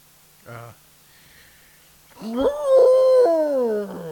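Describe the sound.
A person imitates an elephant, with a short low grunt and then a loud, drawn-out wavering trumpet-like cry of about two seconds.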